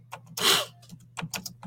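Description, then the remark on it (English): Soft, irregular keyboard typing as Isaiah chapter 26 is typed for Instagram: a handful of quick clicks scattered across the moment, with a loud breathy exhale early on and a steady low hum underneath. No one speaks. “I'm just typing it here for Instagram too.”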